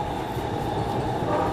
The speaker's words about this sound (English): I got my train. Oh no, that's the North Line.